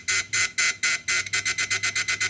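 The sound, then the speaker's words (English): Bright electronic beeping from a liquid level indicator on a cup of tea, starting with a few longer pulses and then speeding up into a quicker, steady run of short beeps as milk is added, with no voices. “See how it got quicker? And that was the added milk.”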